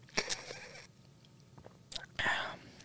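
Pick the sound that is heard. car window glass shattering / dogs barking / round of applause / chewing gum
chewing gum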